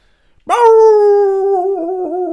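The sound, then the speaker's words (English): A single long, loud, blood-curdling werewolf howl from a film, set on the moors, bursts in after a moment of near silence and holds a steady, slightly wavering pitch, unaccompanied by any talking. “Next thing we hear, a blood-curdling howl.”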